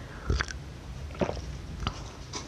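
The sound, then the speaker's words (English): Quiet sipping of tea from a cup: a few brief wet slurps and swallows spaced across a couple of seconds, with no talking. “And first, I'm going to take a sip of my tea so I can stop coughing.”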